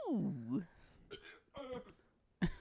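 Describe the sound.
A loud, voiced burp that slides downward in pitch, followed by a few short, rough vocal bursts and one more abrupt burst near the end.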